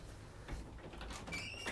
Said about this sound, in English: My cat's scratching at the door.